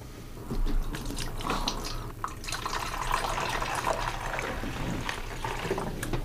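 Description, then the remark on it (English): More water is poured over steaming coffee grounds, trickling and pouring steadily with scattered drips and small splashes over a continuous liquid hiss; no one speaks. “You know, if we pour some more water on it, make that last little bit.”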